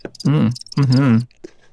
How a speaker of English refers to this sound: Crickets. Yeah. Crickets. Couldn't find the button fast enough.